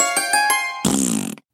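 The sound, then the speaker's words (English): A steady buzzy tone with a few soft puffs gives way to a loud, wet sputtering raspberry blown with the lips, lasting about half a second before cutting off. “There, see, it's a golden raspberry.”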